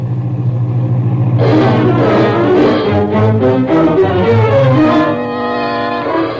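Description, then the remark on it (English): A car towing a horse trailer pulls into the Greendale Ranch outside Chino after dark; its engine rumbles steadily, then revs up loudly as it drives by, its tone rising and wavering for a few seconds before settling back into a lower idle-like drone. “We'd made up time on Green's head start because we saw a car and horse trailer pull into the ranch just ahead of us.”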